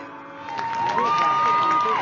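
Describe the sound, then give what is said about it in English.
A stadium crowd at a Roger Bacon game applauds as player Tyler Bullock gets up and walks off the field under his own power to his bench, a dense, steady patter of clapping that swells slightly after the first second. A thin, sustained whistle-like tone runs through the noise. “And that applause you hear is Tyler Bullock getting up and walking off under his own power to the other side of the field to his own bench”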